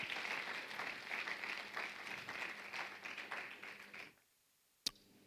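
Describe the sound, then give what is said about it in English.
A church audience claps for Jesus together in sustained, dense applause for about four seconds, then it cuts off abruptly, followed by a near-silence and a single sharp click. “Clap for Jesus.”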